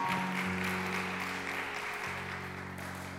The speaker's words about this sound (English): Amen. Give God a hand clap of praise. Hallelujah.